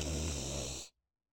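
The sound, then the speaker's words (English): A father snores once, a loud, rasping rumble lasting under a second before cutting off abruptly into silence. “A podcast where two siblings create stories all serenaded by their father snoring.”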